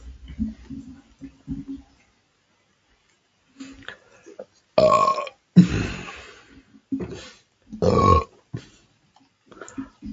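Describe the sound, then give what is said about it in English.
A loud, drawn-out burp rumbles out in a few surging bursts, low and throaty, after a stretch of quieter low murmuring and a brief pause. “Sorry about that, lads and ladies. No, that's the sound.”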